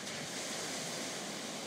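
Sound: ocean waves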